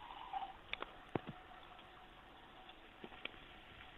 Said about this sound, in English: Take that water. I did need that water.